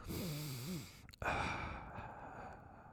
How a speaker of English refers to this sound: Why are you breathing so heavy? I'm not. The mic's just on my mouth. It's creepy, dude.